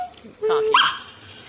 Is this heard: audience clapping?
no